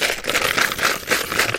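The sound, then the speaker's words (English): A handful of euro coins rattles and clinks together, a steady metallic jingle with quick bursts of clatter throughout and no one speaking. “I have a ton of euros here.”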